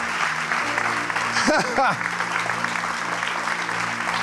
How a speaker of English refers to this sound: Give the Lord a clap offering in the house. Oh, thank you, Lord.